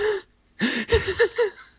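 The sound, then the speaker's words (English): A voice imitates the heavy, out-of-breath wheezing of a man lying on the floor: a short gasp, a pause, then a run of ragged, voiced panting breaths in quick succession, fairly loud. “No, he was like out of breath. he was on the floor.”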